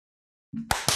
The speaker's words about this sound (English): So we need a second clap then.